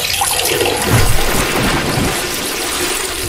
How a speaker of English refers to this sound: Oh, my Lord, he's in a pit, and the losing women are urinating all over him.